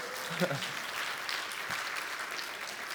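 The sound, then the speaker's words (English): An audience applauds Jesus steadily for a few seconds, a dense wash of many hands clapping at an even level, with a brief voice or cheer rising near the start. “Can we just give Jesus a round of applause for that?”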